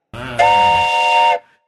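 A train whistle blows outside in one loud, steady blast of about a second, starting with a hissy rush of air and cutting off abruptly, with no voices.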